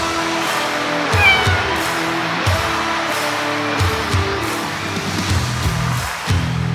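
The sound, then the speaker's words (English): Roadrunner, a cat in Hollywood, meows loudly and insistently, a string of long, drawn-out cries running almost back to back for several seconds, shifting pitch between calls with a slightly wailing edge. “Oh, that must be Bucky's special guests, world-renowned animal behaviorist Katy Kluber and her kitty Roadrunner.”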